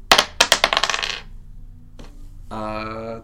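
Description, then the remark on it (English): Dice clatter across a hard surface in a quick burst of sharp clicks that bounce, slow and fade out over about a second, as damage for a Shatter spell is rolled in a tabletop game, followed by a short, steady pitched tone. “So roll that Shatter damage.”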